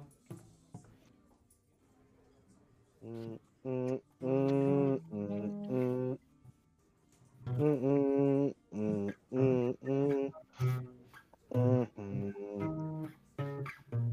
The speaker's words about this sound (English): Not very good, and my guitar is out of tune, but still.